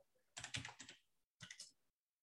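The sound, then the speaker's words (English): Crisp clatter of fingers typing on a computer keyboard, a quick flurry of keystrokes followed by a short pause and a second, briefer burst. No voices. “Once again, you really need to learn how to talk when you typing up shit.”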